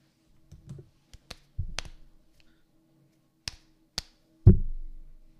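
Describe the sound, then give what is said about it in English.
Hands slap and smack together right up against the microphone as people play rock paper scissors to decide who rolls the dice first, a series of sharp, close taps and claps in an uneven rhythm, ending with one louder thump; no one speaks. “So, should we Rochambeau for who goes first for the rolling? It sounds good. Okay, make sure to do it in the mic.”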